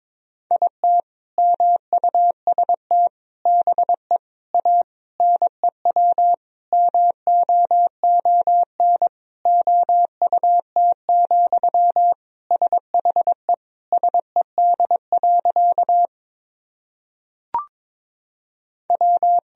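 Morse code practice sentences of common words and abbreviations sent at about 22 words per minute: a single steady mid-pitched beep keyed in quick dots and dashes, running continuously, with a brief pause and a faint click before the keying resumes.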